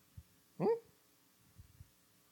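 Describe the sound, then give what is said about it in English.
A person briefly imitates a confused dog's whine: one short, rising, nasal whimper, fairly loud, with a few soft low thumps before and after. “It makes you do that sort of like confused dog head cock. Yeah, yeah. With that little whine.”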